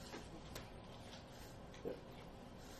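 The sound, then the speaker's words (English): A dusty fan whirs with a steady hiss, broken by faint, irregular rattling ticks from a printer, one a bit sharper near the end. Quiet, with no voices. “Is that the fan? Yeah. Oh. I just need to vacuum it out.”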